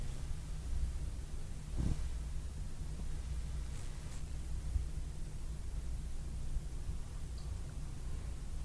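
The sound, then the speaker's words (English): A steady, low mechanical hum from a boiler system in a house drones on without a break, a constant rumble with faint background hiss, with no voices. “Besides the hum of the boiler system, I heard a voice.”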